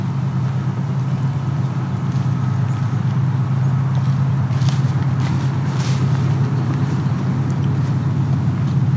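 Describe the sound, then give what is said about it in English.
A train about 5 kilometers away, running along an escarpment that projects its sound over a tall grass prairie, rumbles steadily throughout, a deep continuous drone with a faint rhythmic clatter and a few brief hissing bursts toward the middle. No one speaks. “Although that train sounds nearby, the problem is it's actually more or less hugging the escarpment, which projects the sound.”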